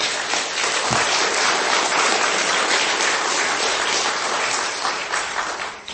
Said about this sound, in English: And so let's give the Lord one more round of applause.